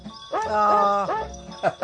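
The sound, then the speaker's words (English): Dogs bark and yelp in a steady rhythm, their drawn-out, tuneful calls following one another fairly loud, with a quick pair of sharper barks at the end. “Well, I found something that the dogs have actually put together themselves.”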